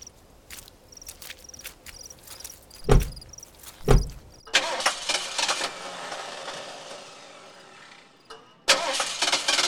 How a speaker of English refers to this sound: Come on, help me get the car started.